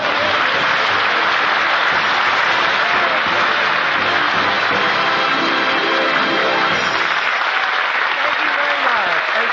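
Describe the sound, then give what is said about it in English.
Loud, sustained applause from a large crowd and the show's cast as Red Skelton is introduced, a dense steady wash of clapping hands with no pauses and no voices standing out. “They're all over the cast is applauding.”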